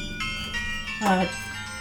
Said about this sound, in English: I love Christmas time. The kids. It's the kids ringing the doorbell. Ringing the doorbell.